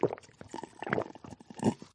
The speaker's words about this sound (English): I drink water, tea, and coffee a whole bunch of times a day. I'm always staying hydrated. And I'm going to take a sip of my tea right now, actually.